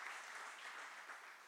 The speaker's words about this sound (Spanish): Levanten la mano las madres. Un aplauso al Señor por todas las madres. valientes.